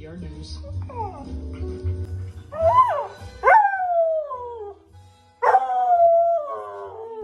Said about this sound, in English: So there's a little video that goes along with it, and you can see she has three different incidents where the dog is giving a little howl.